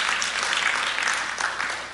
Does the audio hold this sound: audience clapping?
yes